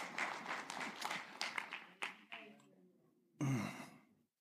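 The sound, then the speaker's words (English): An audience breaks into a brief round of applause, dense clapping that thins and fades after a couple of seconds, followed by a short breathy burst of sound near the end. “Round of applause for Gary.”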